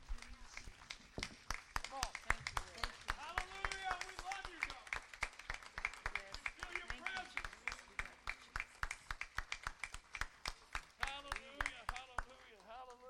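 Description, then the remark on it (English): A crowd at a worship service claps hands for the Lord in quick, sharp bursts that keep going, loud, while voices call out and cheer over the clapping. “Give the Lord a hand clap.”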